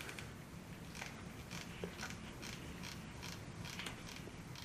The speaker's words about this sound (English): And now we'll hot glue the circuit onto the back of the toothbrush.